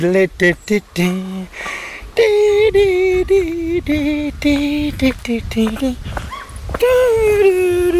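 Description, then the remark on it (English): A dog howls and whimpers in long, wavering tones alongside a person singing, the two voices overlapping loudly in an uneven duet. “Come on, dog, we're duetting here.”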